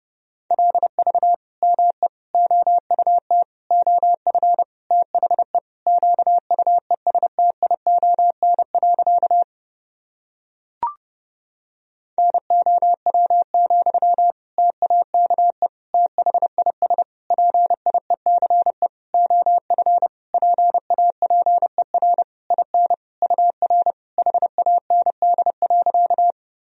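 Fast Morse code at about 30 words per minute, sending practice sentences built from common words and abbreviations: crisp beeps of one steady mid-high pitch, keyed in quick dots and dashes, broken by a short pause and a single click midway.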